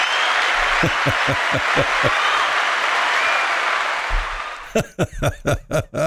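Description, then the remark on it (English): A loud, dense burst of crowd applause and cheering, played from a soundboard on a radio show, fills the first four seconds, then fades as a man starts talking over the tail end. “The minute you introduce me, the crowd goes wild, right?”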